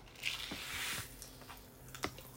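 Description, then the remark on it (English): A whole pack of popping candy crackles in a mouth: a fizzy hiss dotted with sharp, irregular little pops and snaps, fairly quiet, with no talking over it. “Talk about an explosion in your mouth.”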